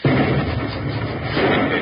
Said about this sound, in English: Don't be so nervous, boss. Well, I'll feel better when I hear that explosion. You'll hear it.